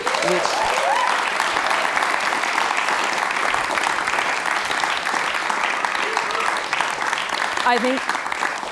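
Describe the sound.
A sustained round of applause from a crowd at an evening panel event, applauding the event's organisers: dense steady clapping at an even loudness throughout, with a few faint voices and whoops rising above it.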